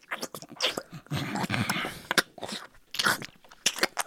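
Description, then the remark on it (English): A voice imitates, with the mouth, the wet, gelatinous squelching and slurping noise of a gelatinous flesh monster, fairly loud, in a run of irregular sloppy bursts with brief gaps, and no words spoken. “It's just like, it's like slurping all over the place.”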